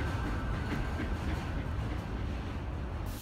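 A steady, rumbling steam train drone with a low mechanical roar and faint hissing, continuous throughout, with no voices.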